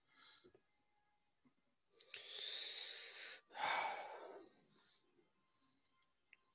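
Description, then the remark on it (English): A voice imitates the faint breathing of a stiff, motionless body with two long, airy breaths, a drawn-in inhale followed by a rasping exhale, with short silences before and after. “There's no movement. There's no nothing. Just a faint breathing.”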